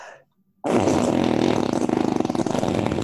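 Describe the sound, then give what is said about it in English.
A loud, sustained arm fart noise, a sputtering low flapping buzz that starts abruptly after a brief quiet and rattles rapidly for over two seconds. “I am queen of the arm farts.”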